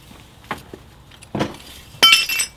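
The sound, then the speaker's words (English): Sharp clinks of phosphor-coated glass, a couple of separate knocks, then a louder burst of shattering and tinkling shards near the end, with no one speaking. “It's the glass is fucking going to kill somebody. Yeah, plus it's coated in phosphor shit.”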